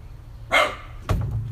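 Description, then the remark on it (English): A dog barks twice as it is being put back inside: one loud, full bark followed a moment later by a shorter, sharper one, with a low rumble of background noise throughout. “Man, this dog loves to bark.”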